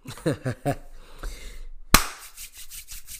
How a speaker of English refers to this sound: Y'all hear that? That's that Alpha Male Strategies claps. Shout out to AMS, man. Love that, man. I have to do that clap, man, because this is when I do that clap, it's gonna be a little player episode.